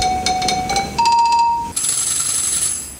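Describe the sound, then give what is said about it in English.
A theatre organ's telephone ring effect: a rapid, trilling bell-like pulse over steady sustained tones that step upward in pitch three times, ending on a bright, high ringing note, with no talking. “You've got the telephone, the horn, bird calls, fire alarm, train whistle.”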